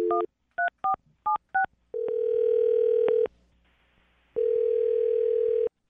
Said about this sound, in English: Okay, I'm going to dial her phone number right now, get her on the phone, and see if we can figure out why she's not calling you back, all right?